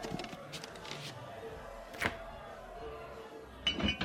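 Ice from a fridge clinks into a glass: one sharp, bright tap, then a quick cluster of ringing clinks near the end, all fairly quiet over a low background hum.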